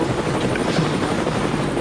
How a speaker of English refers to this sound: I always like the adding the helicopter. Oh yeah. Yeah, the helicopter.